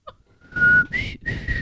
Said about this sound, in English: I can whistle.